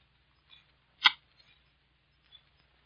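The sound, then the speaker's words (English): A lighter clicks sharply once, loud, lighting a cigarette, followed by a few faint small clicks and rustles in quiet; nobody speaks. “You got a light?”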